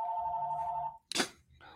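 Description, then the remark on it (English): A club's telephone rings with a steady electronic two-tone warble lasting about a second, then cuts off, followed by a brief loud clatter like a handset being picked up and a faint noise after. “That's the club's phone.”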